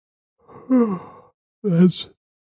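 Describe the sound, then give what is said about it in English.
A person yawns audibly, two drawn-out breathy vocal sounds that sag downward in pitch, fairly loud, with a short pause between them and no talking. “That's a yawn.”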